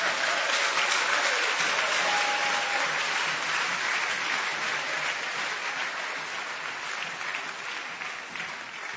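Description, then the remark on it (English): Sustained applause from a large crowd, a dense, steady wash of many hands clapping at once that holds strong for the whole stretch and eases only slightly toward the end. “Your clapping is by some way.”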